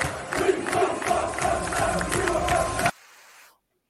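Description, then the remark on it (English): A crowd of football fans chanting "we want Rodgers out" in unison, a steady rhythmic call repeated several times at moderate volume, with no single voice standing out, before it cuts off abruptly into near silence. “Yeah, it wasn't particularly loud, but it was, we want Rodgers out.”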